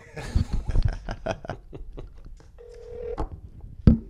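Scattered clicks and soft chuckling give way to one short, steady ringback tone on the line, followed by a sharp click as the call seems to connect.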